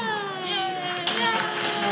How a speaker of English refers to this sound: That's applause for you. We're holding for it.